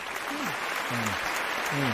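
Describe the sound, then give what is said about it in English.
Steady applause from a seated recital audience fills the space, a dense, even wash of clapping hands, with faint voices murmuring underneath. “It's called the recital crowd applause sound effect.”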